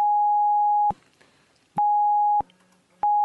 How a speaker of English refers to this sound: Sorry, you're going to have to beep that, Tom.